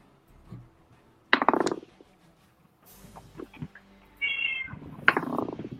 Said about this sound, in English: Meow. That's Dharma.